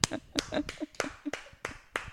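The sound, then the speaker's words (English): A short burst of hand clapping: about seven sharp, fairly loud claps in a quick, even rhythm, with faint voices murmuring underneath. “That's the first applause break that's ever occurred on the What's Your Jersey podcast.”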